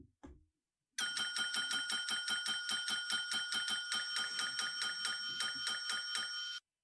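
A small bell rings rapidly and insistently, struck about three or four times per second for several seconds, bright, its shimmering tone overlapping between strikes after a brief low bump.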